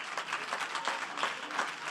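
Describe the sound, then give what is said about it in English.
A church audience claps their hands to the Lord during a sermon, a dense wash of many claps that swells in a loose, steady rhythm, with no voices standing out over it. “Come on, somebody, just clap your hands to the Lord.”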